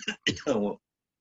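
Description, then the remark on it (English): Three quick, harsh coughs in a row, fairly loud, the last one longer and more throaty, then silence, from a person coughing after a smoke break. “Sorry, coughing. Got me after my smoke break.”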